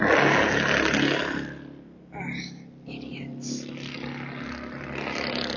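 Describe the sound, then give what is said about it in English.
A loud car engine roars and revs past, fading within a couple of seconds, then a man mutters a brief annoyed remark over lingering background rumble. “Honestly, if your car sounds like that, your dick has to be real, real small.”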